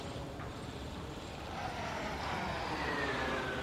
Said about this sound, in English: Plane. That's man-made.